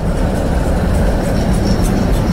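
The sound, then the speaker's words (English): A steady, loud rumble of an old tram rolling through the city streets of Belgrade, with low mechanical grinding and faint metallic squeals higher up, without any talking. “Its ancient trams provide a distinctive soundtrack to the city streets”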